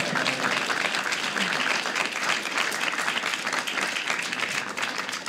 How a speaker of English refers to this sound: y'all can clap for that, by the way.